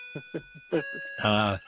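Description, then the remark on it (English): A steady, high electronic alarm clock tone rings continuously through the whole moment, while voices make short bursts of sound and then a louder drawn-out vocal sound over it. “as we hear my alarm clock go off.”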